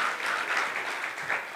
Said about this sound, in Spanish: Dar un aplauso a esos jovenazos.